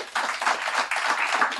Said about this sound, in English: Okay, well done. Big round of applause.